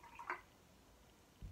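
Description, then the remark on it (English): A few drops of lemon juice fall into water with a brief, bright plip, followed by quiet and then a soft low thud near the end. “I unfortunately don't have fresh lemon today, but a few drops. And my water.”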